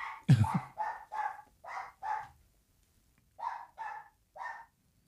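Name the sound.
small dog barking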